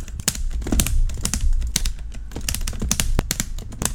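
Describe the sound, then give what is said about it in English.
Rapid, irregular clacking of an arcade joystick and buttons being played right up by the microphone, with sharp plastic clicks in uneven bursts over a low rumble, and no voices. “Put the joystick up here and just be like.”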